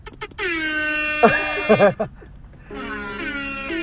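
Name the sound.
air horn blasts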